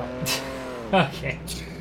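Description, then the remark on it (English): Racing car engines from a video game, on a narrow Monaco car park track, hum at a steady pitch, then one revs briefly and drops in tone, with bursts of hiss, moderately loud over muffled talking. “Oh, we got some Project Cars 2 action. Monaco car park.”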